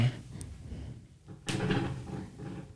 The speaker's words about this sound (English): Somehow your chair got up against the table. Okay. I thought it was kind of close.